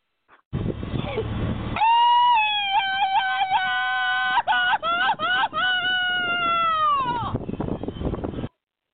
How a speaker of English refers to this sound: What are you talking about? It's the Mexican yell. It's part of my culture.